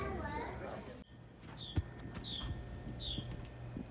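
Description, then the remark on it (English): A bird outside a house chirps repeatedly in short, high, downward-sweeping calls, several in a loose rhythm. It sounds clear, with a voice talking briefly at the start and low background noise throughout. “That bird is outside my house, y'all. Clearly the world's loudest.”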